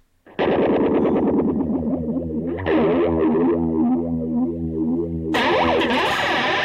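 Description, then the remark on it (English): A distorted electric guitar played through a flanger pedal in its warp setting, its tone sweeping and warping in swirling comb-like whooshes, with a bright, zappy ray-gun character as the chord hits ring out loudly for several seconds. “So you get a lot of cool flanger effects, and let's keep going.”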